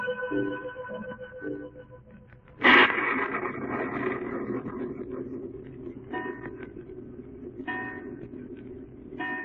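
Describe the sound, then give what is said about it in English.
A clock at Darrow House strikes 11 o'clock with resonant, bell-like tones. A bright, loud stroke rings out and lingers, followed by further chimes at a slow, steady pace, with no voices. “There it is, Dr. Travick. Just 11 o'clock.”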